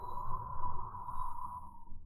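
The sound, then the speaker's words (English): A steady droning hum holds at an even pitch for the whole stretch, with a faint rumbling wash underneath and no voices or breaks. “And there's kind of a pressure you feel in your ears. Okay. A sort of hum of like...”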